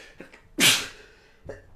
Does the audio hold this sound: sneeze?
yes